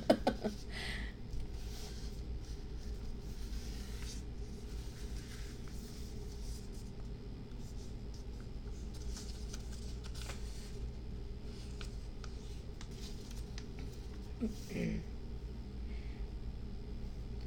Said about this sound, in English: Now you're working with two layers of paper now, so you've got to be a bit more patient as you put your fold together. Like my paper doesn't want to fold.